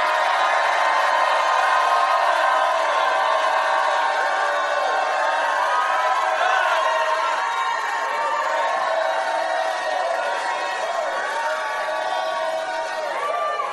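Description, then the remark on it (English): A large audience jumps to its feet and shouts and cheers together to the Lord in a loud, sustained roar, with overlapping voices, whoops and high cries blending into a dense wall of sound that barely dips for the whole stretch. “Jump up to your feet and shout like you never shouted in your life.”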